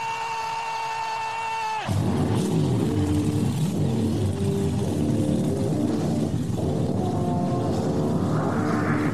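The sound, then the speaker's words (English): A high starter whine gives way to a race car engine roaring to life, then loud revving that climbs and drops several times in quick bursts. “Race fans, it's time for those most famous words in motorsports. Driver, start your engine!”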